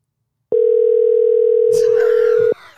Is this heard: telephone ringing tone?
yes